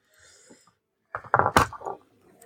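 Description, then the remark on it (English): New metal dice clatter and tumble across a hard surface in a burst of sharp, rapid clicks lasting under a second, preceded by a faint, quiet high hum. “I got new dice. They're very loud and very metal.”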